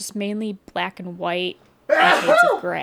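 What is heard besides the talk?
sneeze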